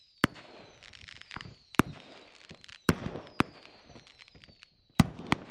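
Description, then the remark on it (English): Sharp fireworks bangs go off one after another at irregular intervals, about seven loud cracks, with a rising whistle and crackling between them. No one speaks. “Fireworks have long been a staple of 4th of July celebrations, and they date back to a time way before the holiday existed.”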